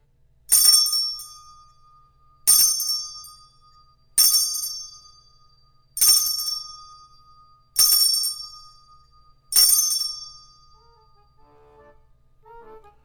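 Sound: bell chime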